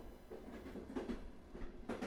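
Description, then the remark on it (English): A train carriage rumbles steadily along the tracks, with rhythmic clattering clacks from the wheels over rail joints, fairly loud with no voices. “The carriage was empty now, except for her, of course, because all train tracks, as we now know, lead to the big house.”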